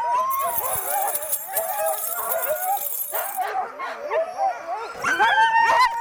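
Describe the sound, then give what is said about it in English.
A chorus of sled dogs barks, yips and whines excitedly all at once while being hooked up to a sled, a constant overlapping clamor of high-pitched calls and howls, loud, with no pauses throughout. “All that excitement and noise and chaos hooking up, and you pull the hook and it's just instant silence.”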